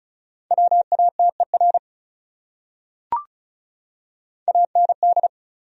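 Fast Morse code at about 35 words per minute: two short bursts of steady, mid-pitched beeps in rapid dots and dashes, separated by a pause with a single sharp click, no talking.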